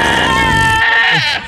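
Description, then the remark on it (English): A loud, wavering goat bleat with a nasal, horn-like tone sounds once, holding steady for over a second before trailing off abruptly; a goat sound effect offered as a car horn sound on a Tesla. “You got a goat, a horse, and a fart.”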